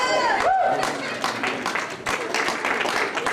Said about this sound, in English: Good morning, everybody. Welcome to life. Can we stand our feet and clap our hands for Jesus?